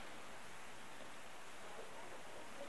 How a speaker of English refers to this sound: Rain sounds like a high-pitched hiss.